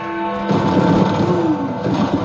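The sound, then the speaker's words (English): New Year fireworks crackle and pop in a dense, continuous barrage, filling the air with a rumbling wash of bursts after a ringing tone from the Big Ben bell fades at the start. “You can hear the fireworks.”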